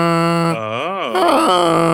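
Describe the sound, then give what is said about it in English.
A person imitates the guttural yowl their cat makes when urged to greet another cat: a sustained, throaty vocal tone that swoops up and down in pitch midway through, then settles into a steady low drone, about two seconds long. “And now every time I try to get him to go say hi to her, he, like, starts making a noise I've never heard him make before.”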